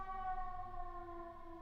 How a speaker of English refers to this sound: Chicago. No sirens all day. Two sirens, actually.